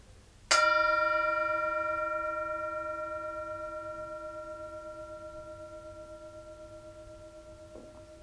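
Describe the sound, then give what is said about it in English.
A single bell is struck once, ringing out with a clear, layered tone that slowly decays over several seconds, sustaining faintly to the end with no other sounds. “And again, wherever you're at, if you're listening to this, we invite you to just be present and enjoy the sound of the bell.”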